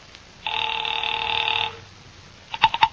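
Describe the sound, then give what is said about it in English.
After a call is dialed on a dial telephone to Pacific Seaboard Fidelity, a single long ring sounds for about a second over a faint hiss, then a quiet pause and a quick cluster of sharp clicks like a receiver being picked up. “Mallard left and I took the slip of paper he'd given me with Ayers' phone number on it, sat down by Amici's pet aversion and doodled with the dial.”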